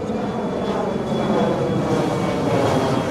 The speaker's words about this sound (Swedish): Och så lyfter Aeroflot Tupolev 134 mot Sankt Petersburg.